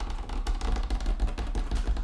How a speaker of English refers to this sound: You see how hard you can hear the table click clacking about? Practicing my typing class.